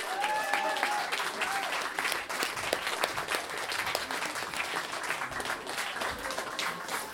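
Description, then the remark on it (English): Sustained applause from an audience, a dense steady patter of many hands clapping at an even loudness for several seconds, with a few faint voices and a brief whistle mixed in. “Round of applause”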